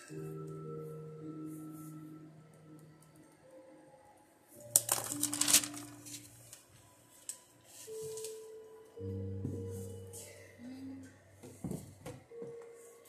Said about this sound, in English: All right. I got cards already falling out, y'all, but I still gotta get it shuffled properly as well.